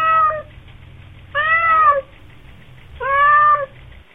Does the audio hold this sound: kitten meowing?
yes